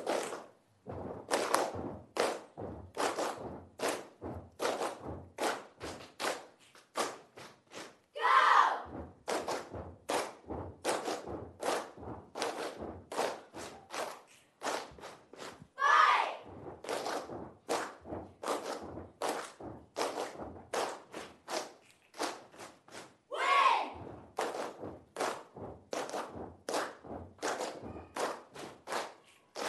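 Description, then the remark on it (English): A cheer squad performs a stomp routine, stomping out a steady, fast rhythm of sharp thuds, with brief pauses and a few clap-like accents, the pattern repeating three times with no talking. “Which one are we doing first? Stomp.”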